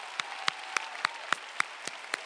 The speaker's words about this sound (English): Let's stand and give him a big hand. Amen. Let's give him a big hand. Let's give him a big hand.